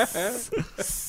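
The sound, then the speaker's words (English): A voice imitates a snake's hiss, a sustained breathy hissing held for about a second, with brief voiced sounds mixed in, moderately loud. “I feel like that Zach Galifianakis is a bit of a gay snake.”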